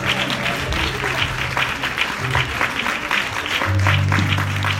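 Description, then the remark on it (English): A church audience claps loudly and steadily to thank God, a dense, continuous patter of many hands with voices and a low sustained tone mixed underneath. “Clap your hands like you're going crazy and tell God thank you.”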